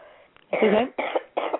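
harsh barking cough

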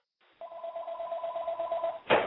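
telephone ringing

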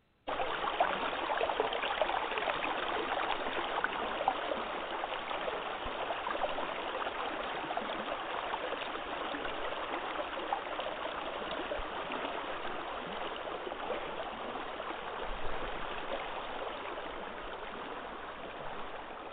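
flowing river water

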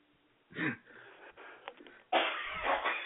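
person coughing

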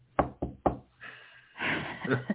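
knuckles knocking on wood

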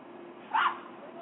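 dog barking

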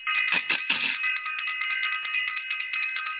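bell ringing

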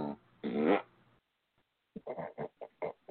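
fart

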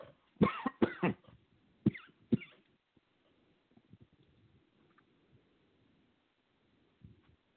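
coughing fit

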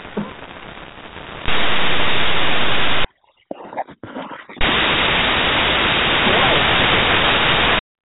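radio static

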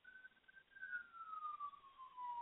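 ambulance siren outside

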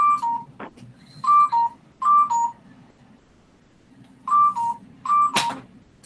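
telephone ringing

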